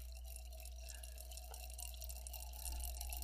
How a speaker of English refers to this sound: Listen to that. You can hear this water. You really can. It's really going, too. It's still going, too. Wow.